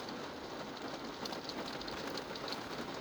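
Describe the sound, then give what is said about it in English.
Steady rain pours down in a park, hitting the roof of a car, a dense, even hiss with scattered droplet patter, continuous, with no voices. “There's me and some other person, and it's very peaceful. The rain's coming down, hitting the roof of the car.”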